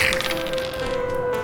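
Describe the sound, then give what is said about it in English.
Three-sided dice clatter across a hard tabletop as a player rolls for initiative in a fantasy role-playing game, a quick burst of sharp clicks and taps with a faint ringing tone lingering underneath, fairly loud, with no one talking. “your dice, why do we have to use your 3-sided dice for every fucking roll, man?”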